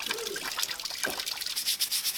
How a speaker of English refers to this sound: And then finish blocks and take it outside and wash with salt water. They're literally washing the cheese with water. Salt water.